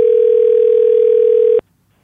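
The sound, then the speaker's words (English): A steady, continuous telephone dial tone of an outgoing call to a friend holds at one pitch for about a second and a half, then cuts off abruptly into near silence. No voices are present. “So now it's time for a segment of the podcast called Phone a Friend, where we do just that.”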